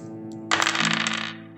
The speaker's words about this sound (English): Let's see if these hot dice are still smoking. Rolling for hit points. That's 4d8 with no bonuses, with a min out at 17.